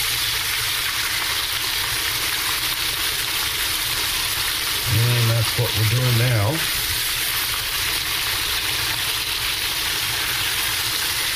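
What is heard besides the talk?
chicken frying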